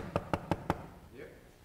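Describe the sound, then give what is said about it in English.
Four quick, evenly spaced knocks on a door, crisp, as Naaman knocks at Elisha's door in a retelling of the Bible story, followed by a brief faint vocal murmur in the quiet that follows. “you go answer the door”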